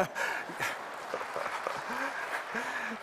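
A person claps steadily over a few seconds, the sharp hand slaps landing in an uneven rhythm against a continuous hiss, with a couple of brief voiced sounds near the end.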